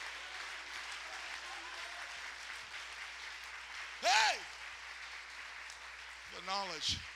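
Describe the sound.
A church audience claps steadily during a sermon in a dense, continuous patter of applause, with a couple of loud shouted exclamations from voices breaking through near the end.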